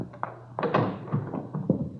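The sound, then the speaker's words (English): A front door being opened and closed, heard as a series of soft, hollow thumps and taps over about two seconds, fairly quiet, with no one speaking. “Front door. Mind answering?”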